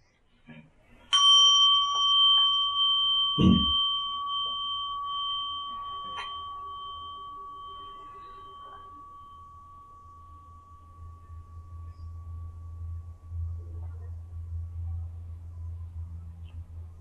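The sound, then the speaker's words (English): A meditation gong is struck once to begin a meditation session and rings out with a clear, sustained tone that slowly fades over several seconds, followed by a soft low rumble in otherwise quiet surroundings. “So, I ring the gong once here to get us going.”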